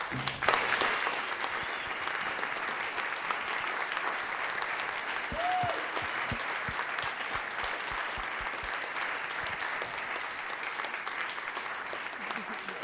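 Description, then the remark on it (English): Steady applause from an audience for the evening's hosts and presenters after their talks, a dense, even patter of many hands clapping at once with a brief whistle rising above it near the middle. “If you were a host or a presenter tonight, please stand up and let everyone clap for you and thank you one more time for sharing your stories.”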